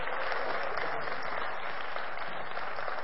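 A crowd claps steadily together in praise for the music performed, a dense, even wash of hand clapping that holds at a constant loudness for the full few seconds with no voices rising above it.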